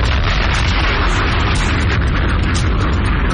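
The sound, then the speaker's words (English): The Hot 97 radio station's explosion sound effect: a loud, sustained deep rumbling boom with crackling, noisy debris filling the whole stretch, dense and continuous without any talking. “And this is the Hot 97 explosion.”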